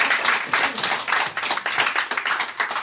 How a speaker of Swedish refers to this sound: Ja, applåd.